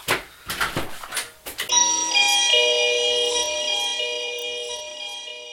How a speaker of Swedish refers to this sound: Vänta, det plingar på dörren. Jag kommer om 2 sekunder, vi får klippa bort det.